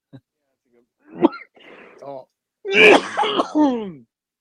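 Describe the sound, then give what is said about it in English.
A harsh cough and throat clearing: a short rasp first, then a louder, rougher burst of hacking that trails off with a strained, voiced exhale. “That was the first good cough.”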